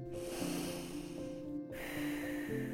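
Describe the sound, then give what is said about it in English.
A slow, drawn-out breath in, a brief pause, then a long breath out, airy, with soft sustained musical tones humming underneath. “Another breath in, slow and long.”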